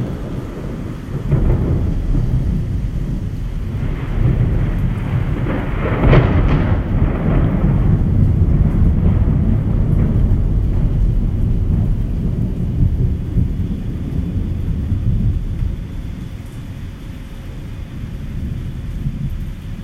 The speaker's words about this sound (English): It is 1:26 in the morning. And I'm doing this because the skies are rumbling. The gods are thundering.